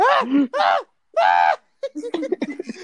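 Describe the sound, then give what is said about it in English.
A 35-year-old man, a bus driver, demonstrates his panic scream: three loud, strained screams in quick succession, each pitch arching up and down, followed by a burst of chattering speech. “Can you give us an example of your scream?”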